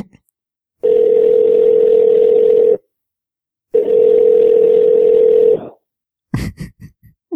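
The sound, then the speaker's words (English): Two long, steady ringback tones of an outgoing phone call, each lasting about two seconds with a pause between, fairly loud and clear, followed by a brief burst of voice at the end. “So who would you like to call? Let's call ….”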